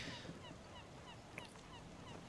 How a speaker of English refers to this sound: You're starting to hear birds again because you're close to the shore of the temple.